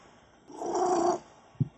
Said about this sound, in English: Oh, that's the damn cat. All right, hold on.